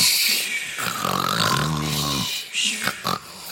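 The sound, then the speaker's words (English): Several voices imitate snoring together, a loud, rasping, drawn-out snore that rattles for a couple of seconds, followed by a few shorter snorting breaths and bits of laughter. “Can you have some snoring noises?”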